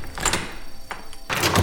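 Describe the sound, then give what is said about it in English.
A heavy cell door in an airport's basement detention center slides and bangs shut, a sharp metallic clack follows, then a loud clattering of the lock being secured, with no voices. “And they throw me in a cell and lock the door.”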